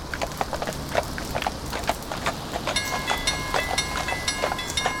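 A train rolls into devastated Halifax on cleared tracks to collect the wounded, with a steady run of metallic clacks, then high squealing brake tones rise over the rumble as it slows. No one speaks.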